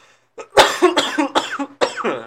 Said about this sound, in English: As I cough like a fucking man, Jesus, I'm gonna sound real fucking sad here.